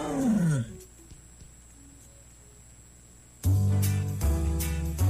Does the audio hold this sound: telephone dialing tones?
no